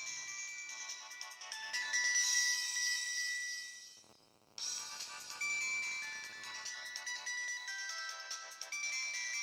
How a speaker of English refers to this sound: This is what my cell phone sounds like when it rings.